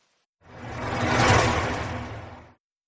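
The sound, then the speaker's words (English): A single vehicle with headlights on hisses past on a wet road in the rain in South London at night, its tyre spray swelling up and fading away over about two seconds, with a low rumble underneath and no voices. “Draw the curtains so I don't have to watch the headlights roaring through the rain of South London.”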